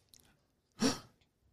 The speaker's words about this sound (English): Did somebody gasp?